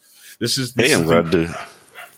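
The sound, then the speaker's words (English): Puppies bark in a loud, high-pitched burst as they start to play: a couple of quick yaps, then a longer run of excited yelping that trails off. “As you can tell, the puppies just realized that I turned my mute off, and now they started to bark.”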